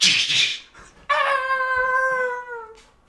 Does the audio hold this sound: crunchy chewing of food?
no